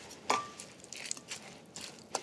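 Wet, squishy stirring of a thick chicken spaghetti mixture seasoned with cayenne pepper, with soft sloshing swishes and a few sharper clicks of a utensil against the bowl, moderately quiet and without any talking.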